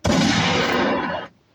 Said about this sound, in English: Gunshots.